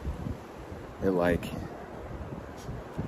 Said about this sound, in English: It's so windy, I'm all sweaty.